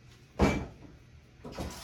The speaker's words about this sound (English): Saw the door? Thought I heard a door just now.